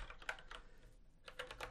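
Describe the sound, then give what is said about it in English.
Rapid keystrokes clatter on a computer keyboard in quick bursts as a document is typed, with a short pause in the middle, moderately loud, with no voices. “So first and foremost, I wanted to say, typing my doc and...”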